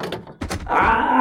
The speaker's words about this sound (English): I can't get this door to close.